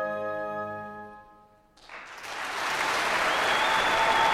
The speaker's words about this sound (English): We got to the end of the piece, and there was an eruption of applause.